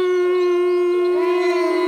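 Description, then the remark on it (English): A loud, sustained howl holds one steady, droning pitch for about two seconds, swelling slightly near the end, like wolves howling, with no other sounds around it. “That was wolves.”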